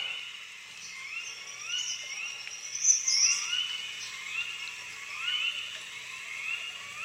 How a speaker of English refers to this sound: What are those background birds? A lot of like... so that is the song of the American Bittern. Oh my gosh, it almost sounds like pulling a bow and arrow back or something and releasing it.